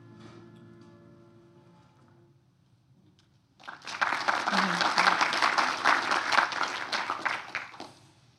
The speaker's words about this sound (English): Is that normal that everybody claps after a clip? It's nice, I'll take it.